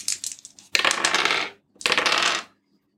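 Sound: dice being rolled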